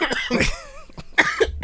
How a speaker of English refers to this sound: It's very distinct. It's very distinct. The weed cough... It's very distinct. You gotta get it out. That's the thing about it. That's how you know it's a weak cough. Yeah, you can't hold it. Stop. Won't stop.